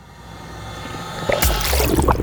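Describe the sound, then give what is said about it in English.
A low rumbling hum gives way to a sudden, fairly loud wet sloshing and trickling of glowing green ooze dripping from the side of a plastic-covered pallet, continuing to the end, with no voices. “a lump of glowing green ooze dripping from the side of a plastic-covered pallet.”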